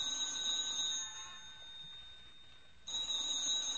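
A telephone rings with a shrill, high bell tone, breaks off for about two seconds, then starts ringing again. The ringing is loud and steady, with no voices.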